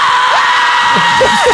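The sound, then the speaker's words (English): A virtual in-game stadium crowd sound effect, played at a ball game with empty stands as a batter laces the ball down the line, cheers wildly in a loud, steady roar, with scattered whoops and yells rising out of the din throughout. “The crowd is going wild.”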